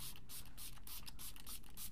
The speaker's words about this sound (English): So a little bit of setting spray just to finish it.